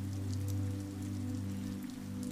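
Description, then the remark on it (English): Heavy rain patters steadily on skylights overhead in London, a dense, continuous drumming of drops over a low droning hum, with no voices present. “Raindrops fall heavier on skylights, their patter persistent.”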